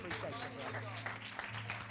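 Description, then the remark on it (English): A church audience at night claps steadily and densely as a hand clap to the King of Kings, a continuous wash of hand claps, with a low sustained tone humming underneath and some vocal sounds mixed in. “I wonder, would you give that hand clap to the King of Kings tonight?”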